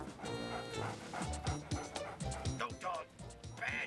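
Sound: dog barking and yipping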